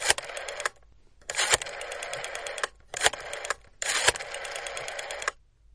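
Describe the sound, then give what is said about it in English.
A telephone being dialed: four short bursts of rapid mechanical clicking and whirring, separated by brief pauses, with no voices. “I just came back here to make a couple of phone calls.”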